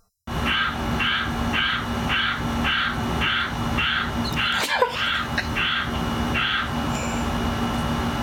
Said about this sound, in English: Well, all I'll say is, that's a crow. He's puffing his neck out pretty hard. Showing off that coin.